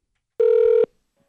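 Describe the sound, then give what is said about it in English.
A single steady telephone tone sounds once for about half a second, loud, then cuts off into silence, like a call ringing through before anyone answers, during a phone call made to a wife earlier in the day. “This is the phone call, I don't know, about 3 hours ago, I made.”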